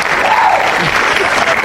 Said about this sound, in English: Even that applause sound effect.